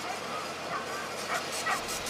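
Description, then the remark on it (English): Puppies yip and bark in a quick, scattered flurry of high, short calls, moderately loud, with a faint hiss of background noise underneath. “Do you like puppies?”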